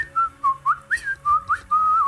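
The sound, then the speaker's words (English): Someone whistles a short, lilting tune, a quick string of bright pitched notes that rise and dip, ending on a sustained wavering tone. Clear, with no talking. “And as you all walk in, you hear someone whistling.”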